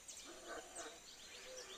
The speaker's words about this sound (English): It's mid-morning. It's a bright, sunny day. And the monkeys are out and having a great time, as you can hear.